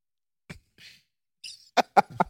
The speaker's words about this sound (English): What kind of cough did he do? I was clearing my throat. It wasn't a cough.